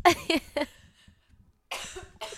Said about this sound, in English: But it's coughing, but also crying, but also laughing.